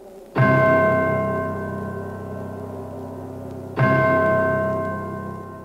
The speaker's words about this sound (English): This chiming bell gets irritating very quickly, as well as this not really a harmonica sound.